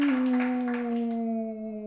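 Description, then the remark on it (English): A person does a long, sustained wolf-like howl: one steady, slightly falling vocal tone held for about two seconds, with a breathy, noisy edge at the start that fades away. “Have you been practicing wolf howl since our last show? That was my official wolf call.”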